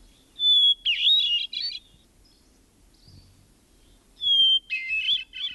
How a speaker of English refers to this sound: Some believe the song of the wood thrush to be the most beautiful bird song in North America. Others select the song of the hermit thrush.